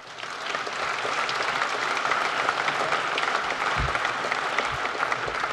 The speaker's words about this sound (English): It's very important to all of us, and I'd just like to offer one more round of applause to the panel.